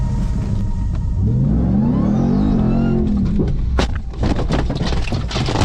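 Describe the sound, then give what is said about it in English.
A TRX pickup truck engine, driven by Brandon Schaub, revs loudly while racing and doing donuts in the Southern California desert, its pitch climbing and then sagging over a steady low rumble, followed by a stretch of rough, crackling bursts and thuds as the vehicle churns around. “TRX racing through the Southern California desert.”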